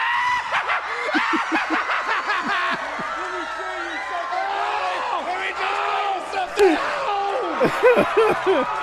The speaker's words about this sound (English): Doc, what you got? What are you? Sting screaming. Are you done? Sting screaming. Oh my God.